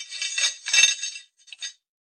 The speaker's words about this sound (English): Handcuffs, eh? It's a good thing for you I wasn't feeling playful.